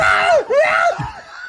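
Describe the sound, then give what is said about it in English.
A man lets out loud, strained screams as hornets attack him, two wavering cries that rise and fall in pitch, raw, with a brief break between them and no other talk. “You hear the scream off of the side.”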